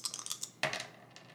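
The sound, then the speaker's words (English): Two dice are rolled across a hard surface during a game: a few light taps, then a louder clattering tumble that quickly settles into scattered faint ticks, landing on a 4. Fairly quiet, with no voices. “And then I'm going to roll the dice to see where the elevator takes me.”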